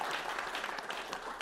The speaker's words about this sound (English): A round of applause, guys. That was fantastic.